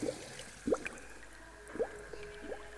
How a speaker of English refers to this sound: He shivered as he heard the whooshing of water streaming down from the ceiling tiles.